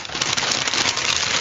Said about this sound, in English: Oh, is it raining? That's some foley of the unwrap. Ah, yeah. What's in there? Well, I know why the box is so big, because it is a Guitar Hero wireless guitar.